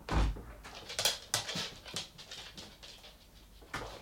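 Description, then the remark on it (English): A dog whimpers softly outside a bedroom door, waiting for the person inside to come out, a string of short whines mixed with breathy panting and scuffling, fairly quiet, with no one speaking. “Cooper's gonna go and sit outside my sister's door until she exits, and hopefully my sister will walk her”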